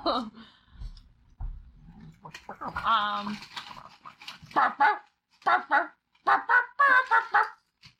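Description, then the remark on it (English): A person imitates a dog barking, giving a run of short, loud, rhythmic woofs and yips in a sing-song pattern to a tune, after a few softer vocal noises. “Come on, the world wants to hear you bark.”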